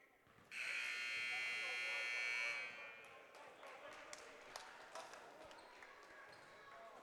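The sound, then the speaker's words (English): A loud, steady buzzer blares for about two seconds at a basketball game between Ferndale and Croslex, then cuts off as play gets underway, leaving crowd noise with sharp sneaker squeaks and ball bounces echoing in the background. “All right, buzzer sounds.”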